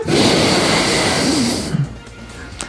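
A loud, rushing exhale blown straight into the microphone, harsh and breathy for nearly two seconds before trailing off into quiet room noise, with no talking.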